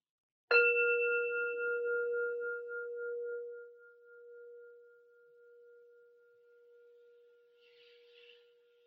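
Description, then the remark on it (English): A single meditation bell is struck once to close a meditation practice and left to ring, its clear, steady tone slowly fading over several seconds in otherwise quiet surroundings. “And I'll ring a bell to close our formal practice for now.”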